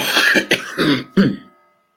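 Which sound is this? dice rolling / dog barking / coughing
coughing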